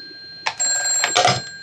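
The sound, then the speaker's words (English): An old-fashioned telephone bell rings with a bright, sustained metallic tone, fairly loud, broken by short clattering bursts near the end, as if the handset is being lifted. “At any rate, all that now remains is for the phone to ring.”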